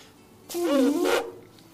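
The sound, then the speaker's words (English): A person makes one short, buzzing raspberry with their voice, imitating a dog fart. It lasts under a second, starts abruptly, is fairly loud, and is surrounded by quiet. “Did it just is that a fart? Fart? Yeah. It was a dog fart.”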